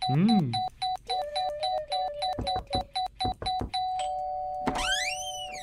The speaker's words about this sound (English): You can do the ding dong knock knock joke. Oh, someone's at the door.